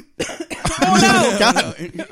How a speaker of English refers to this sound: Oh no! We coughed.